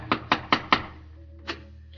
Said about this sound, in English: A stormtrooper, revolver in his holster, calls it a German home. He knocks on the front door.